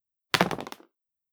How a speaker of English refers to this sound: And let's roll the dice to see who goes up in the lift first and who comes down first.